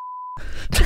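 A short, steady censor bleep tone sounds clearly for a split second, then cuts off abruptly into a louder burst of rough, noisy sound.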